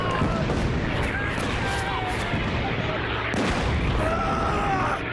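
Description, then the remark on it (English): A dense, continuous roar of napalm bombs exploding in an air strike by Mustang aircraft on British positions, loud, with heavy booms and crackling fire rolling together for several seconds, voices shouting faintly beneath the din. “The Mustangs failed to spot the Argyle's recognition signals and dropped napalm on British positions, inflicting heavy casualties.”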